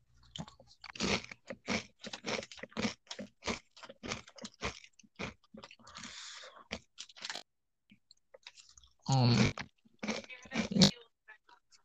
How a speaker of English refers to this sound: You know, I just hope you know you're chewing. Everyone can hear you're chewing. I wanted to say this as you were like when you first started chewing, but I figured, yeah, he'll figure it out. It's been a while now. You still haven't figured it out.